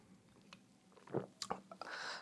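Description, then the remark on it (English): Quiet mouth sounds of someone taking a sip of beer: a few soft wet clicks and a gulp, then a brief breathy exhale, with no talking. “Another sip of beer here.”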